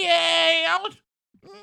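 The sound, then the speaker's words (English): A person imitates a cat with a long, drawn-out meow, bright and harmonic, then after a brief pause starts a second, shorter meow-like call. “Are you a cat now?”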